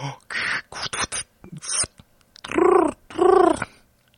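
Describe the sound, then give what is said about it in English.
A voice imitates a cat's purr: a run of short, breathy, rattling bursts, then two longer, loud, rolling voiced tones with a throaty, gargle-like texture. “Nope, that was a purr.”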